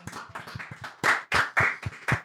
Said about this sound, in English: Everybody clap it up for them.